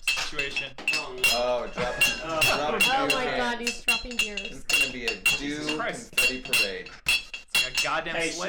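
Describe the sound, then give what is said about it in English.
Glass bottles clink and rattle against each other in a fridge in quick, irregular bursts of bright, ringing knocks, with voices talking over the clatter throughout. “Why do you have so many bottles in there? In the fridge.”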